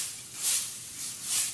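Dry straw rustling softly, a hissy crackle that swells twice in gentle waves, with no voices; the straw is that of a house made of straw.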